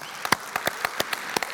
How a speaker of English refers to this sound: Now, if y'all clap every time I say something, this is going to be like the State of the Union. Y'all are going to be here until next Sunday, just so you know.